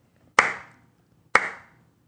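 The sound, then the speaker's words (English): A slow golf clap: two sharp, crisp hand claps about a second apart, each trailing off in a brief ringing tail, with no voices and near silence between them. “Is that a golf clap? Slow clap?”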